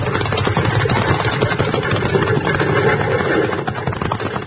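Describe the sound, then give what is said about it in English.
A horse-drawn wagon, its team driven by a man, rushes by, a steady, loud, dense rumble and clatter of wheels and hooves that holds throughout, with no voices. “Jingles, that wagon. Get out of the way, Bill. That's a runaway.”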